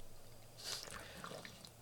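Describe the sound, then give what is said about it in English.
A soft splash of water spilling onto a person drinking it, followed by a few faint, scattered drips landing in an otherwise quiet space with no talking. “Spilling shit all over my fucking self. I'm sorry. I think it was water.”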